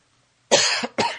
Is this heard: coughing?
yes